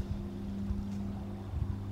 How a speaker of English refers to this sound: Let's wait till that car passes and let's see.